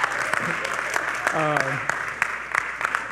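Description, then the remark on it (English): A church audience applauds a preacher preaching there for the first time, a steady wash of many hands clapping with sharper individual claps standing out, while a brief voice-like cheer rises midway through. “So, yeah, you can clap.”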